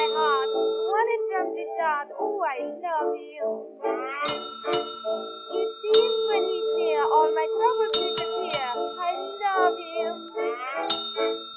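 A desk bell is struck again and again, about seven bright dings in quick, uneven bursts, each leaving a clear ringing tone, while a voice carries on underneath.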